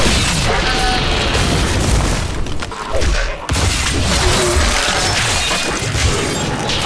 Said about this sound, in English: Yeah, you have explosions. You were blowing shit up 10 minutes ago.